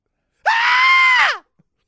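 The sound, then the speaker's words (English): A single loud, sustained scream lasting about a second, rising sharply then trailing off in pitch, voiced by someone imitating a panicked shriek, alone with silence around it. “And then you start screaming like...”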